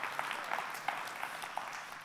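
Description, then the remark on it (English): A large group clapping together in a steady, dense wash of applause, sustained for the whole stretch, with a few sharper claps standing out. “Nobody claps alone. So when somebody starts that, we all just join in.”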